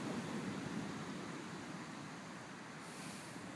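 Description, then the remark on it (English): A steady, broad wash of sea surf rolls on from far away, soft and continuous with a gentle swell and fade, with no voices over it. “And as we breathe this in, you may hear the sea in the distance.”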